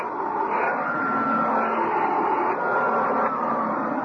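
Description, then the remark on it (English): A vacuum cleaner runs steadily on carpet, vacuuming cat lint off it, a constant loud whooshing drone with a faint whine that holds for the whole stretch, with no voices. “Just give me a minute to vacuum the cat lint off this carpet.”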